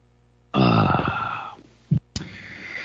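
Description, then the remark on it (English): A loud, drawn-out slurp of hot coffee from a cup with a gravelly, throaty edge, followed by a brief low thud and then a steady breathy hiss. “have a cup of coffee like I'm having right now. If you listen, here's a sip.”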